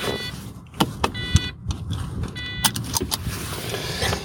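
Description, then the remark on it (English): A car alarm sounds from outside, with repeating high-pitched electronic tones in short bursts over sharp clicks and a low, steady background rumble. No one speaks. “Always alarms and stuff, isn't it?”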